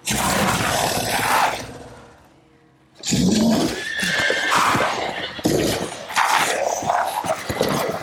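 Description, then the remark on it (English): A horse in a video game neighs loudly, a long whinny that fades into a short pause before more snorting, whinnying and stamping noises return, busy and layered like a game soundtrack. “These guys have horses and shit.”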